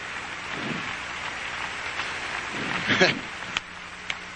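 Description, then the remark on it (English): A crowd claps hands together in a dense, steady patter that sounds almost like rain, with a few voices mixed in and a brief louder swell of clapping partway through. “Clap your hands and love the Lord right now.”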